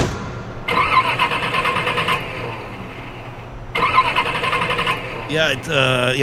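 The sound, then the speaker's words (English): An old car engine struggles to start: two long bursts of rhythmic, grinding starter cranking, loud, separated by a pause, then a brief wavering sound at the very end. “That engine's got some problems.”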